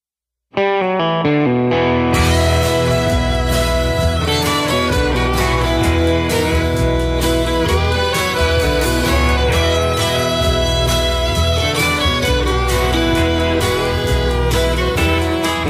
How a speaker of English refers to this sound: I'm sure everybody's going to be wanting to download the new song because it's very good. Very good.